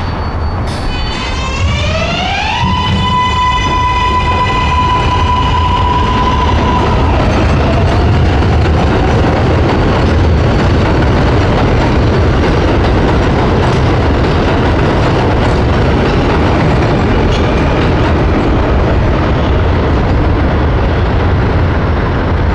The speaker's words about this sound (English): At the end of my street is the elevated 7 train. When I first moved into the neighborhood, the sound was irritating, but now it sounds to me like the ocean. This is what the trains sound like at midnight.